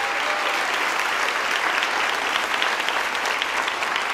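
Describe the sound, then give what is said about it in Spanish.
A church audience claps to God steadily for several seconds, a dense, even patter of many hands at a constant, fairly loud level with no voices breaking through. “Aplauda a Dios por eso.”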